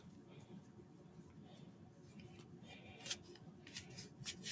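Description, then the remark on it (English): A deck of playing cards being shuffled, with quick crisp riffling bursts that grow busier and louder toward the end, over a low murmur of a voice. “Oh, I'm shuffling horribly. This is not going well.”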